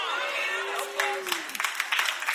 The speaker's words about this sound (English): That was the most pitiful clap I've ever heard at Elevation Church, and I've been watching for a long time.